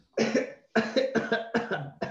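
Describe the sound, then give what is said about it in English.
A person tries to cough through pain, producing about five strained, halting bursts in quick succession, loud, with no talking. “I can't even cough.”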